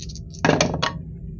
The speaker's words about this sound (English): So you're rolling 4 dice, right? Or 5. 4 dice. 4 dice. The 5th die is automatically critical.